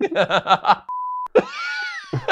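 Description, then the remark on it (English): A voice speaks briefly, then a flat, steady censor bleep cuts in for under half a second over a president's name, followed by a loud, drawn-out vocal groan or whine. “Any other president gets mentioned this episode, they're getting beeped.”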